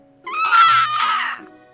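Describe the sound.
Voices imitate bird calls, a crow's caw and a hawk's screech, in two shrill, strained bursts lasting about a second, loud and high-pitched with no other talking.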